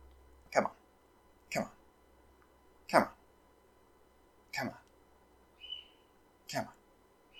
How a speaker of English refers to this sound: Gotta feed that bird you can hear in the background.